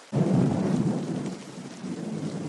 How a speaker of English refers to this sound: Let me just say it before this rain stops and we go back.